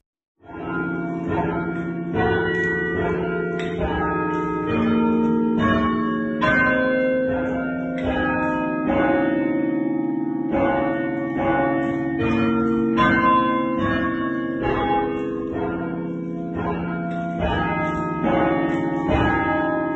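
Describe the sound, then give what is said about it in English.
Cathedral bells, played with a bell-ringing mechanism, ring out the hymn tune Hail Glorious St. Patrick, note after note struck in a steady, measured rhythm with rich overlapping resonance, loud, with no talking. “It would be remiss of us to talk about this bell ringing mechanism without asking”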